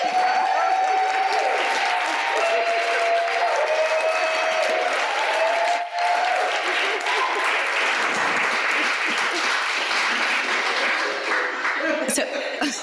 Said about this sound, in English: Can we give our panel a round of applause?